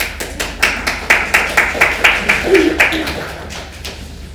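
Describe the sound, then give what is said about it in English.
An audience breaks into applause, a dense patter of claps that holds steady for a few seconds before thinning out and fading, with a brief voice cheering partway through, as guest speakers are invited up to share one morning. “That was a very nice applause.”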